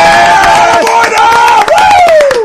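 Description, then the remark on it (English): Loud crowd applause and cheering as former UFC bantamweight champion Dominick Cruz is introduced: a dense wash of rapid clapping with shouting and a sustained high whistle or yell riding over it, steady throughout without a break. “Hey, a round of applause.”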